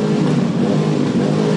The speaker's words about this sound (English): At the same time, in dueling demonstrations, off-duty police revved their motorcycles to show support for the fallen officer.